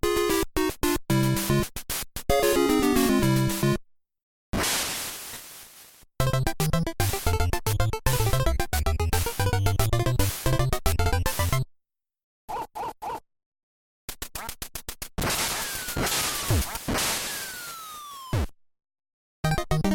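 Video game title screen music in choppy, glitchy bursts of bright synthetic tones and shifting melodic lines, broken up by several abrupt silences, with no one talking.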